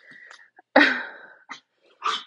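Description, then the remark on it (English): A dog barks sharply at the neighbor's dog, which has come up on the porch: one loud, harsh bark followed by two shorter, quieter yelps, with a faint whine at the start and no talking. “My dog just saw the neighbor's dog come up on the porch and he goes crazy.”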